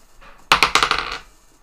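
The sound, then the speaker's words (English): Dice, rolled to determine how long before a character is knocked out, clatter across a hard surface in a quick burst of about six sharp, bright clicks that bounce and fade over under a second, with no voices. “And then I'm going to roll a con save this turn, and then if he's still stuck in it, then if he fails, then I'm going to roll something to determine how long he is before he's knocked out.”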